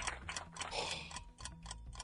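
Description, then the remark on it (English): A quiz timer ticks steadily, a regular series of quick clicks at a brisk, even pace, sounding alone without any talking over it. “The timer and you smiling at me is both.”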